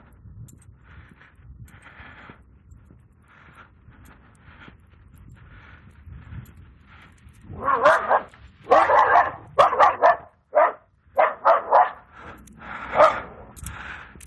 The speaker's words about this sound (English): Puppy says hello.